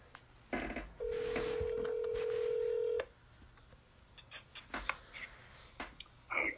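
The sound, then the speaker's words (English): A phone call being placed: a sustained two-second ringing tone, then a series of short, sharp button clicks spaced irregularly, fairly quiet, with no voices. “So let's get Tom on the phone.”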